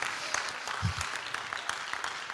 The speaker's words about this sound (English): Come on, give the Lord a clap and a shout. Even if you're not charismatic, stir yourself up this morning.